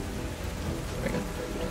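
Steady rain pours down amid a deep, continuous rumble of thunder, with ocean waves crashing beneath it. The storm stays dense and unbroken throughout, with no voices.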